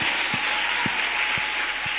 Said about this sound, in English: Please clap very well.